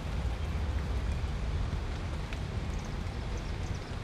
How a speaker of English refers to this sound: So it's raining out. Weird.